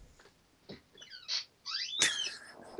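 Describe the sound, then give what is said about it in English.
Old furniture squeaks and creaks in a few short, irregular bursts, fairly clear, with shrill rising and falling tones and brief quiet gaps between them. No one speaks. “squeak for us.”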